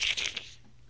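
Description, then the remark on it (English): A voice imitates someone slamming a hand on a computer keyboard: three quick, harsh, noisy bursts, fading into quiet. “No, he was just slamming his hand on his keyboard.”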